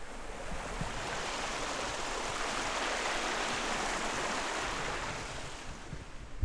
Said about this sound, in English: Yeah, but no, actual babbling brook.